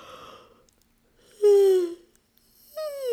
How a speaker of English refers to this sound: You might want to find space between your ribs by reaching up on one side and yawning.